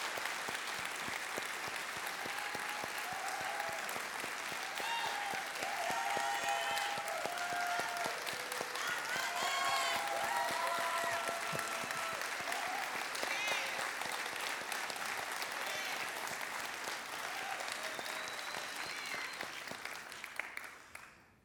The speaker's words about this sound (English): You know, I mentioned earlier in the earlier service that I didn't know if I was going to share this thought, but then when I saw people standing and clapping, I thought, I got to tell you,